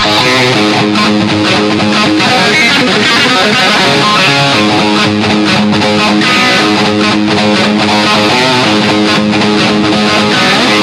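A loud, dry distorted electric guitar plays alone, an isolated track taken from a Guitar Hero video game's split-up tracks, chugging rhythm riffs with natural and pinched harmonics, whammy-bar dive bombs and sustained chords, with no other instruments or voices.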